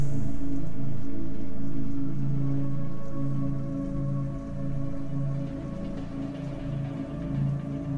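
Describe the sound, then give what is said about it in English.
Steady rain patters on hard surfaces in a city of tall buildings and neon signs, a continuous dense wash of sound with a low droning hum beneath it, holding constant throughout before easing slightly in volume. “The rain provides a constant background noise.”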